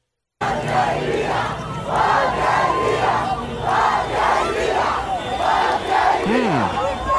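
A large crowd of protesters in Cuba yells in unison, chanting a short word or phrase again and again in a steady, loud rhythm of roughly one shout per second, with no single voice standing out.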